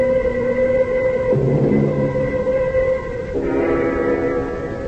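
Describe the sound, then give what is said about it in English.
A passenger train, the 1 o'clock Austin train, rolls along the rails with a steady rumble, while sustained droning whistle-like tones shift pitch partway through. No voices are heard. “1 o'clock on the Austin train, the last coach.”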